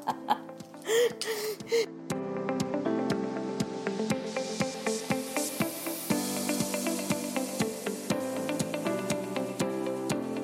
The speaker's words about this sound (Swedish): Det är någon slags logikgrej med små kuber som är i en lång rad ihopsatta. Så ska man liksom snurra ihop den så att den blir en kub. Och så är det svarta och vita.